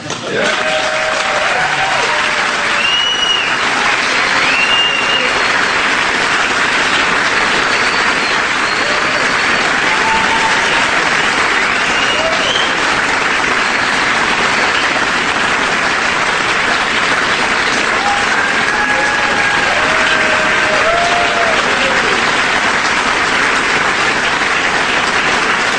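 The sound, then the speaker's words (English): Sustained, loud applause from a large audience as Donald Trump holds up the Washington Post front page reading 'Trump acquitted'. A dense wash of clapping with scattered cheers and whistles rising above it fills the whole stretch. “He's holding that paper up for the duration of that applause.”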